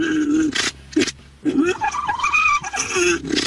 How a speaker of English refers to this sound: Llama mating right there. That was llamas you just heard.